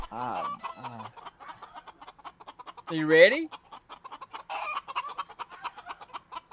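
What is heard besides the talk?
chicken clucking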